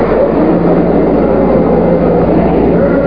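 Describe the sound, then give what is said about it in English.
Apollo 11 rocket engines roar at liftoff in a loud, continuous, deep rumble that holds steady throughout, thick with low-end power and slightly muffled, as if heard through an old recording. “All engine running. Liftoff. We have a liftoff.”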